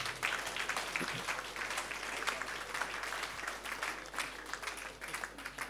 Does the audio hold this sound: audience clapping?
yes